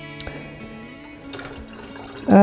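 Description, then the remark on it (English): Stop bath being poured steadily into a small film developing tank, a gurgling fill with a faint rising tone, ending in a sudden louder clunk or splash. “Stop has gone in fine.”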